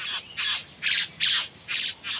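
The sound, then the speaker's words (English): A male satin bowerbird gives a rapid series of six harsh, raspy squawks in an even rhythm, loud, with no voices present. “I know I'm saying he and him, and that's because only the male bower bird builds the bower and sings and dances like this, and only the male has those satiny navy blue feathers.”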